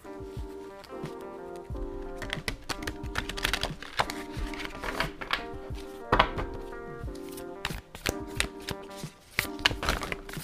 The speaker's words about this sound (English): I'm shuffling the cards right now.